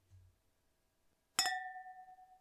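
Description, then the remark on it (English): A single bright clink of thick wine glasses touching in a toast, followed by a clear ringing tone that sustains and slowly fades, heard alone without talk. “Different acoustics. It's a thick glass.”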